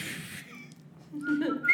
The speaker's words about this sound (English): Yeah. Wow. You're a good whistler